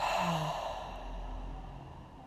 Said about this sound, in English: In through your nose, out through your mouth. You're gonna take a deep breath and exhale, open mouth.